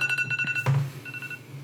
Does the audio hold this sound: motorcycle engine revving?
no